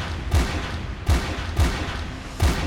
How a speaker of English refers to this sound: A few seconds later, you hear five gunshots.